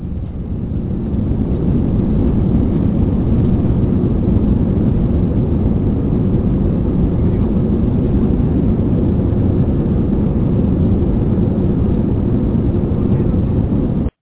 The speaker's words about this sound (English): All right, let me get this big-eyed bird on up off the ground. I rubbed my two little coins together and bought me an airplane.